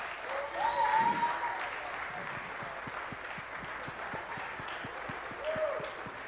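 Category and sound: crowd, round of applause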